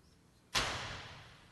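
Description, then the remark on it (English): A door is slammed shut as hard as possible on request during a church sermon: a sudden, loud bang after a moment of quiet, followed by a lingering tail that fades slowly. No one speaks. “I want you to slam that door, and when I tell you to, as hard as you can, I want you to hear this in your soul and never forget it.”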